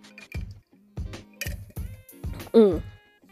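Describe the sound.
Drinking sounds: a series of five or six wet sips and swallows of water with lemon, lime, ginger and cucumber in a steady rhythm, ending with a short voiced exhale of satisfaction.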